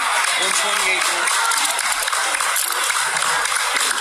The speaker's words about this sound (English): All right, so that's all the people clapping because the pro-Christian man was arrested.